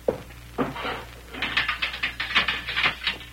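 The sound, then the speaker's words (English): A cell door lock is worked open: two heavy metallic clunks, then a rapid, even run of ratcheting clicks and clacks, moderately loud, with no voices. “Open the door, cell lock”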